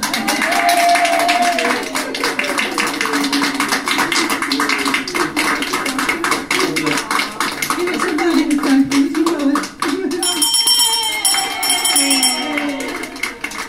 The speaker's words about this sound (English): Ring this bell 3 times well. It's told to clearly say, my treatment's done, this course is run, and I am on my way." So, flanked and applauded by the staff of the chemotherapy unit, it was indeed a great joy to ring that bell.